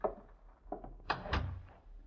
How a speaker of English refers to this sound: Close the door, please.